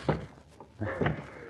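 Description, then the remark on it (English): Fists pound on a wooden door of the Sieur Bermond's lodge in a North African forest at dawn, in a few heavy, irregular thuds, tangled with raised voices shouting for help in panic, moderately loud. “As we return to them now in the ghostly dawn, they are still hammering their fists on the door in a fit of panic, still shouting hopelessly for help.”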